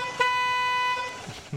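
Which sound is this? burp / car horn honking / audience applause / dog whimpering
car horn honking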